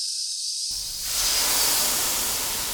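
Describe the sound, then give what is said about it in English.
A loud blast of steam hisses out, starting as a thin high hiss and swelling into a broad, roaring rush of noise that fills the whole clip without any talking. “He draws out the sibilance at the end, and that rolls right into another blast of steam right into your face.”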